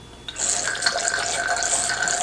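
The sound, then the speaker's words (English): Wine is poured through an aerator set over a glass: a sudden start, then a steady bubbling rush of liquid with an airy hiss as air gets into the wine, continuing without pause and filling the glass with bubbles. No one speaks. “And you'll hear this neat sound of the air getting into the wine.”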